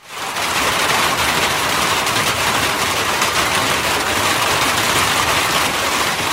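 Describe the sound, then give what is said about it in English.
Rain drums steadily on a tin roof, a dense, bright hiss of countless tiny patters that holds at an even, loud level throughout, with no voices. “Rain on a tin roof.”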